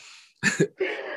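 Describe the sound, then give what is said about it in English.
Two quick coughs in succession, loud and abrupt, followed by a rough breathy exhale or throat sound trailing off. “I had to cough.”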